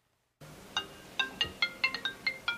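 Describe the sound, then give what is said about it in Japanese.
A telephone rings with a quick series of bright electronic tones, about eight chiming pulses in an uneven melodic pattern, clear, with no voices over it: a call from the B League to the office of Kumamoto Basketball Co., operator of the Kumamoto Volters basketball club. “熊本ヴォルターズの運営会社、熊本バスケットボール株式会社の事務所でリーグからの電話を受ける”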